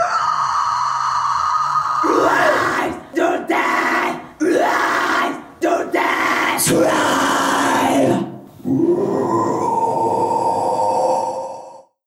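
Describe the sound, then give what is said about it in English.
A death metal growl by a vocal performer with a trained voice: loud, gritty, distorted vocal roars delivered in several long bursts with brief gasping breaks, the raspy tone sliding upward at times before a final sustained, slightly higher growl. “This is a death metal growl.”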